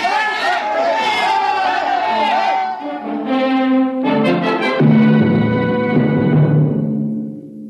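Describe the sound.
An angry crowd yells and shouts together in a loud, continuous roar of many voices, surging and overlapping close by for several seconds, like a mob in pursuit.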